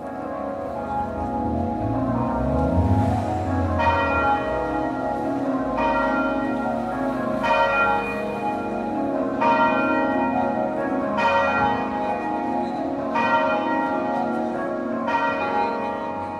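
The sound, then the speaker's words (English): Church bells ring in Sheffield, UK, in a steady peal, strikes arriving about every two seconds over a dense, sustained wash of overlapping tones. The ringing is loud, with no voices. “King and Bells, Sheffield, Duncan Chapman, UK.”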